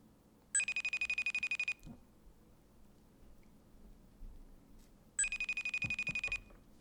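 A telephone rings twice on an outgoing call placed from Nashville, Tennessee, each ring a rapid warbling trill lasting about a second, separated by a few seconds of quiet background hum.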